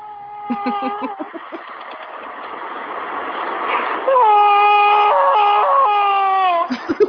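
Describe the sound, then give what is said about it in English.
Harvey Keitel cries loudly in a scene from the film Bad Lieutenant, starting with choppy, gasping sobs that build into long, loud, high-pitched wails and howls, ending in a few broken cries. “Yeah, I pulled up Harvey Keitel crying in Bad Lieutenant.”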